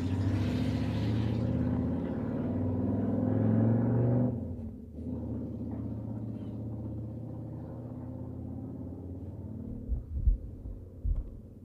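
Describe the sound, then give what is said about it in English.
A car engine rumbles loudly, then the sound drops off after a few seconds as the vehicle pulls away, leaving a lower fading drone with a few dull thumps near the end. “Okay, he is gonna try to leave. There we go. Taking off.”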